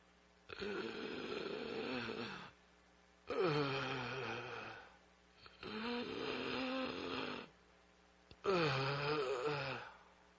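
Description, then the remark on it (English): Labored, difficult breathing: four long, heavy, rasping breaths with a groaning, wheezy edge, spaced at a slow, regular rhythm, fairly loud with no talking. “Do you hear the difficult breathing?”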